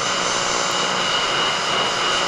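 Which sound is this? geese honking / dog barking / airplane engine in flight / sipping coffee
airplane engine in flight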